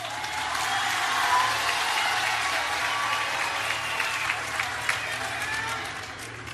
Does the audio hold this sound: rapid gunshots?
no